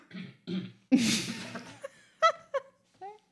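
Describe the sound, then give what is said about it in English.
A harsh cough bursts out once, rough and breathy, bracketed by a few short throaty vocal sounds before and after. “I had a cough.”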